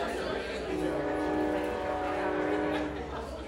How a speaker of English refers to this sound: Hold on, this podcast, this comedy show is brought to you by the train. Just got to let them get the sponsoring, you know?